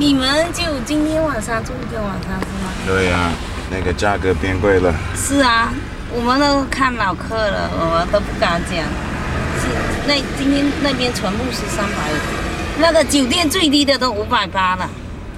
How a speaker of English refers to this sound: So we're in the car with the people from the guest house. One happy family.